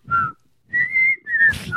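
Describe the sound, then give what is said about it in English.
A parrot next door whistles the theme song to the Andy Griffith Show at sundown: a clear whistled tune of three sustained, slightly wavering notes with short gaps between them, fairly loud, with a low rumbling murmur underneath. “Okay, there's a parrot that lives next door to us, and he whistles every day at sundown. He whistles the theme song to the Andy Griffith Show.”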